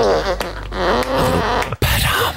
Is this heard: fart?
yes